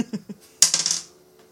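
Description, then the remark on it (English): An eight-sided die, rolled for damage, hits a tabletop with a sharp clack, then rattles in a quick burst of bouncing clicks that fades within half a second, after a few soft taps. “I'm like, that's what, how much damage is it? D8? Here's my D8, yeah. There it is.”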